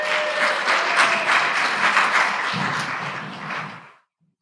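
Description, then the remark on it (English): Loud, dense applause and cheering from a church audience welcoming a speaker up to preach, a steady wash of many hands clapping at once, holding strong for about four seconds before quickly tapering off into silence. “Thanks for clapping and cheering.”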